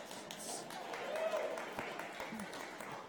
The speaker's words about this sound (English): Okay, so, I can't even see who that was clapping, but yeah. So, if that's you, that's awesome.